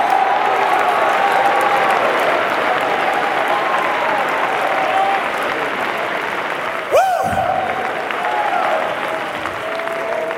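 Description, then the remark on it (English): A large audience roars and applauds from their seats in thanksgiving to God, steadily for about ten seconds, a dense wash of clapping and shouting voices, with a brief sharp thump midway through. “I think we ought to muster a roar from our seats in thanksgiving that God did not lead us into some halfway deal or some Mickey Mouse persuasion, but we have the power of God unto salvation.”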